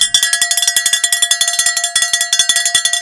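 A loud bell rings nonstop with rapid, rattling strikes, about eight per second, giving a harsh, metallic, high-pitched clangor with no voices. It represents the awful noise Ebenezer Scrooge hears on a cold winter evening, which is a bell in the movie versions.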